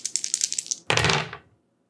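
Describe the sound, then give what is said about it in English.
A handful of five dice rattle briefly, then spill and clatter across a hard surface before settling, fairly loud, with no voices. “So what's your, how many dice are you rolling here? Five dice.”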